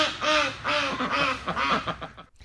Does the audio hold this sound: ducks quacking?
yes